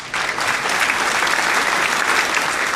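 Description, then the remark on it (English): A crowd in a courtroom applauds steadily, many hands clapping in a dense, even wash of sound that holds at a strong level throughout, with no talking over it. “Everyone in the courtroom started applauding.”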